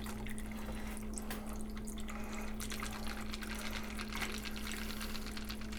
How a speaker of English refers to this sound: We're just going to pour this into a highball glass that I've already had sitting with ice. Strain it, obviously.